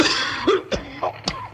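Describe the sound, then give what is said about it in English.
A person coughs repeatedly from smoke while trapped in the cellar of a building set on fire, four harsh bursts in quick, uneven succession over a faint background hiss, with no talking. “that smoke's making me cough.”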